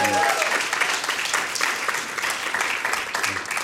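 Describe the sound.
A crowd applauds steadily, dense clapping filling the whole stretch at an even, fairly loud level, with a brief tonal trace of a voice at the very start.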